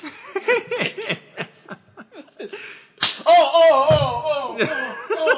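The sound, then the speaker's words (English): A single sharp, loud slap to the face cracks out midway, preceded by quick chatter and followed by an excited voice with some snickering laughter. “I've been slapped.”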